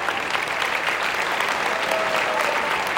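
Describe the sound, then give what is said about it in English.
Steady applause from an audience, a dense, even patter of many hands clapping at a constant loudness for about three seconds, with no voices standing out. “You want to clap for me?”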